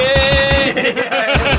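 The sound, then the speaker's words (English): A rapid burst of automatic gunfire rattles off in quick, even shots, briefly pausing before resuming, with a steady electronic tone ringing underneath. “Door opens. Immediate gunfire.”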